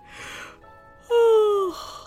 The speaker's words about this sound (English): Uh-oh, Cory. I think … got your yawn from …, and I got it from ….